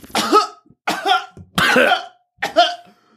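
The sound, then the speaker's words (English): A series of four harsh, raspy coughs, fairly loud, spaced in a steady rhythm with brief pauses between. The coughing is deliberate and theatrical, performed for a skit, with no talking. “We didn't have to cough, but it's better for effect.”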